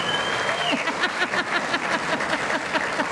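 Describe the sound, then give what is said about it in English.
Sustained applause from an audience welcoming the evening's main guest, Anne Summers, a dense wash of clapping with scattered whoops and cheers rising over it, steady and lively throughout. “A rowdy crowd, huh?”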